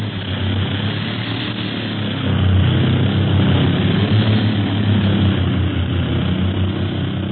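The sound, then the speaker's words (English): A propeller airplane engine drones steadily and loudly throughout as the plane flies over Africa in gusty wind, a continuous low hum with a rough whirring edge that swells slightly partway through. No one speaks. “Hey, it's getting windy around here. Plane's bucket.”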